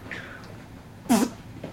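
A single short, sputtering fart noise, likely blown with the mouth, bursts out fairly loud in the middle of an otherwise quiet moment.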